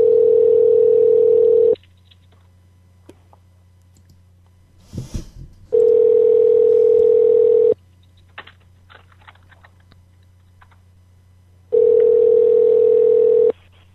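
A loud, steady telephone tone sounds in three long bursts separated by pauses, with faint clicks and taps like number dialing in the gaps, as someone places a call. No one speaks.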